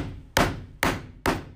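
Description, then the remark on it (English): Three sharp knocks on wood, evenly spaced about half a second apart, each a loud, hollow rap that fades quickly, with no voices alongside. “You knocking on wood?”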